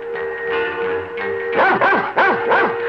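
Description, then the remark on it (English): A white puppy barks in a quick burst of about four high, yipping barks near the end, following a steady humming tone. Fairly loud, with no talking. “Krypto and Superboy find the white puppy for the child to take home.”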